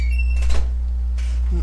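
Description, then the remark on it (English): A door is swung shut by the speaker with a soft whoosh and a muffled thud, followed by a second brief rustle of movement against a steady low hum. “Let me close my door”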